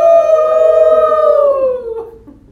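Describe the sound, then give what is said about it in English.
A person howls like a wolf as a breathing exercise for kids, one long sustained tonal cry that holds steady, then slowly falls and fades away; a fairly loud human imitation of a wolf's howl. “Another thing that's really fun to do with kids with breathing exercises is to howl like a wolf.”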